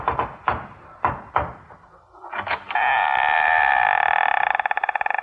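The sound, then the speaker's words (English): Several sharp, fairly loud knocks on the boiler room door in an uneven rhythm, followed by a steady, bright buzzing tone that holds to the end and begins to pulse rapidly. “I arrived after lunch and knocked.”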